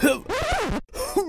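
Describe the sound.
A voice imitates a bear hacking and coughing up a cursed crystal ball: a strained, throaty retch that stretches out, a brief pause, then a shorter gagging burst, fairly loud.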